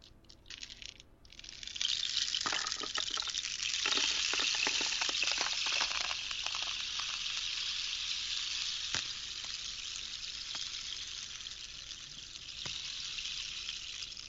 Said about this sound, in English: Now, supposedly this makes it rain when I do this, so we'll see if it rains tomorrow in California. It's supposed to be 100 degrees in the Bay Area, but rain stick, go.